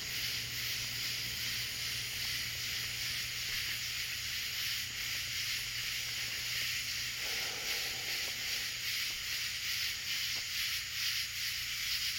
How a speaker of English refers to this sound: My mom said these are cicadas. It's a kind of locust. And some birds, crickets, who knows what all kind of insects, but man, they are singing tonight. And they do every night.